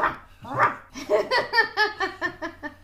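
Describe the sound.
A person's voice imitates a little dog, letting out a quick run of eight or so short, high yapping barks in a bouncy rhythm, fairly loud, with a laughing quality.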